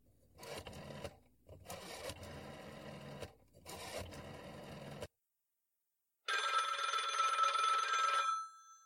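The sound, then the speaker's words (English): A rotary telephone is dialed in three whirring, clicking bursts to call police headquarters, then after a short pause a loud telephone bell rings once for about two seconds. No one speaks. “I guess I'd better call them back. Here, Inspector, use this phone.”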